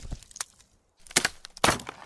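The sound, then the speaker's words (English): A new crowbar pries at a door during a break-in: a few light creaks and knocks, a short pause, then two loud, sharp cracking bursts of splintering wood as the door gives way. “Come on, let's open this thing up. I want to test out my new crowbar.”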